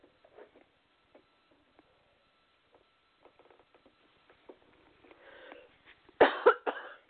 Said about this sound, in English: Excuse me, I may be coughing a little bit.